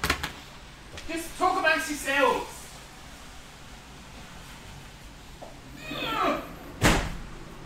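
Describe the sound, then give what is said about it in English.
Doors left open in hot weather are shut, ending with a sharp thud after a softer knock or two earlier on, while muffled voices and faint traffic noise from a main road drift underneath. “I'm just going to close them because it's like now it's home time.”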